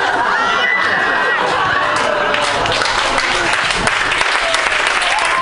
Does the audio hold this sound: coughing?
no